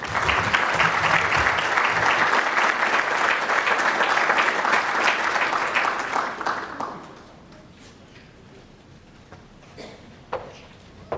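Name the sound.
audience applause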